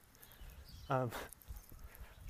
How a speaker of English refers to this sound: So this dog wants to talk to me.